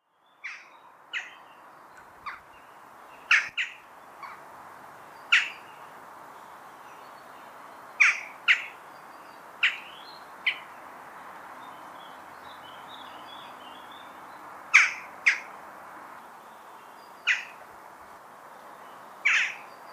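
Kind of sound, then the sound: bird, jackdaw calls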